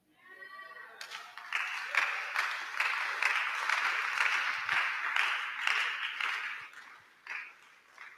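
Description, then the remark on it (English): An audience claps their hands together during a sermon in a dense, steady patter of applause that runs several seconds, then thins out. A brief tonal note is heard just before the clapping starts. “The way you are clapping is very weak.”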